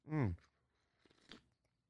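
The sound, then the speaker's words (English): A short voiced hum is followed by a quiet slurping sip of coffee and faint mouth noises, with no talking. “So let me take a sip of coffee.”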